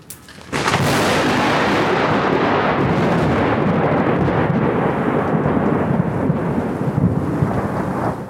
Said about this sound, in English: Crack-a-thoom, lightning crash.